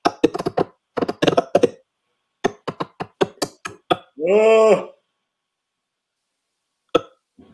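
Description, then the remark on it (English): A rapid run of sharp clicks and taps gives way to a single voiced yawn, a drawn-out moaning tone that rises and falls, then a lone click after silence. “I'm just yawning.”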